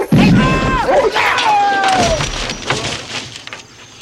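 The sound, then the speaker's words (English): A loud thud of a pet's head smashing hard against wood, mixed with a scuffling crash and high sliding whine-like cries, then trailing off into scattered knocks. “smashed his head down there.”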